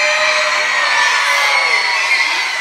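A crowd of children screams and cheers at once in answer to being asked who likes to play video games, a loud, sustained, high-pitched roar of many voices that holds steady for a few seconds without letting up.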